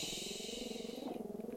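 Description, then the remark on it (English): A female dog in a studio growls low and steadily for a couple of seconds, a rumbling, pulsing snarl with no speech over it. “I think this that's the in-studio dog we have. She's just protecting us. She's guarding the house.”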